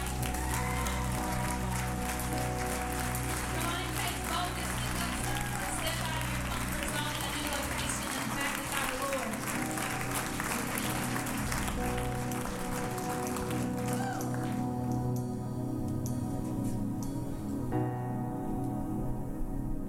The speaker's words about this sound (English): Can we give the praise team a hand?